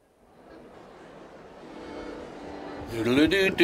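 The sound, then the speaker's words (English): Actual crowd noise on a recording: a dense, hissy crowd roar swells steadily louder over a few seconds, then clearer voices rise sharply out of the din near the end. “Yeah, it was actual crowd noise.”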